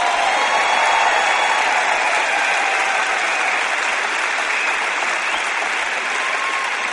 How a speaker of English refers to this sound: Come on, if you're going to clap, don't patty cake.